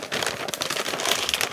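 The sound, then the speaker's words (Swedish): Paper crinkles and tears continuously as a very large, heavy blue gift package is unwrapped, a dense, steady rustling with brief sharper rips, fairly loud and with no voices over it. “Nu är det ett jättestort paket som är blått. Ska du öppna?”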